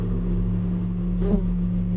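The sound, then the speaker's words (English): A steady, low buzzing drone hums throughout, then briefly swells and bends in pitch about two-thirds of the way through, like a bee zipping past the ear. No one speaks. “If you think that you just heard a bee buzz past your ear, let me remind you that auditory hallucinations are a known side effect from prolonged chronostasis quarantine, such as you were exposed to.”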